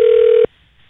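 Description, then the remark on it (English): A single steady electronic telephone tone, loud as if heard through a phone line, holds for about half a second as a call is placed and then cuts off abruptly into near silence. No one speaks. “We called you right directly on the podcast thinking you would not pick up and have forgotten about our phone call, but you surprised both of us.”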